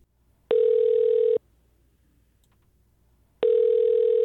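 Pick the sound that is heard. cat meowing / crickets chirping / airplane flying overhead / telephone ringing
telephone ringing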